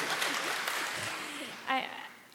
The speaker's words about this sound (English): Are we going to clap? Is that what we're doing?